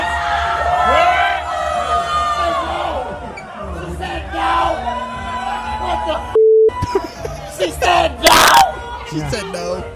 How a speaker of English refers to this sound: On the main stage. Yeah. Clapping, bro.